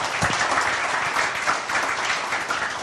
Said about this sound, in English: So huge round of applause to the guys. It's a fantastic achievement.